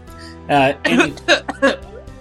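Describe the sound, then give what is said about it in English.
A short run of four or five muffled coughs, voiced and somewhat hoarse, coming in uneven bursts with brief pauses, as someone turns away from the microphone to cough. “I turn away from the microphone to cough.”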